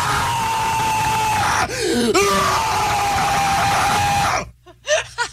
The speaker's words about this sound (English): From a screamo, guy used to scream in a screamo band? We'll do like a primal scream, though, so just to kind of like let it out, like we're doing